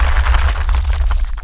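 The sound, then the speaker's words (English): A loud, sustained crash of a wall crumbling in, with heavy low rumbling underneath and scattered cracks and pops of debris breaking apart throughout, no voices present. “You hear a massive crashing sound behind you.”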